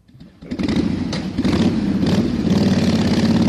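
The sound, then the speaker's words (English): A motorcycle engine sound effect: the engine fires up and revs loudly, rising into a sustained throaty roar with a couple of throttle blips, continuous over a few seconds, with no talking. “Because I have to wait till you hit the motorcycle thing.”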